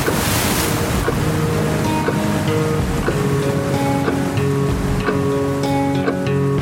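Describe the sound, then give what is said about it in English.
A loud, steady roar of a flood crest wave surging down a river toward a sandbagged levee, continuous throughout, with sustained musical tones playing over the churning water and no voices. “Look up the river. Big wave coming down this way. The flood crest.”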